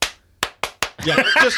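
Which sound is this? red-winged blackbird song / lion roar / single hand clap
single hand clap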